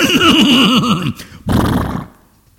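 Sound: horse neighing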